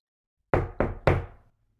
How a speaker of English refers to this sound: Just then, there was a knock at their front door.